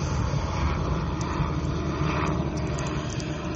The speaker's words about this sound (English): Sorry, there's an aeroplane going past, or a helicopter. It's really low and really loud.